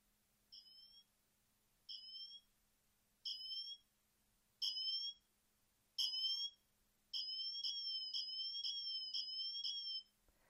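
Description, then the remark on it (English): A smartwatch emergency siren from the watch's big built-in speaker: five short, shrill electronic beeps that grow louder, then a sustained high-pitched warbling alarm tone for about three seconds, with no voices. “And also with this big speaker on here, it actually has a siren built in.”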